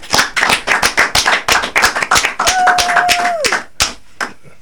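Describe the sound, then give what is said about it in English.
A group claps in a quick, steady rhythm, loud and sharp, for several seconds. Midway a sustained whistle-like tone rings over the claps before sliding downward and fading, and the clapping thins out. “Clap it up.”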